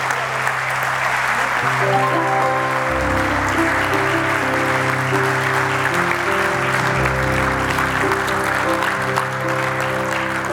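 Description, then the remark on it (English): A large audience at a service applauds steadily and loudly for about ten seconds, a dense wash of clapping with sustained musical chords, like an organ or keyboard, playing underneath. “Big round of applause one more time.”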